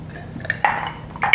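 household object, glasses clinking

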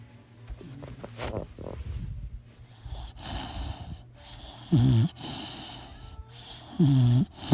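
animal, pet snoring

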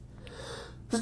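human body sound, sneeze

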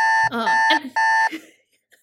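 sound effect, alarm sound effect

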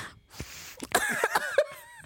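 human body sound, sharp nasal sniff

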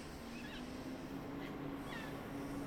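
animal, cat meowing outside

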